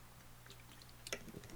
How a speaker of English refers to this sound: I need a sip of water right now.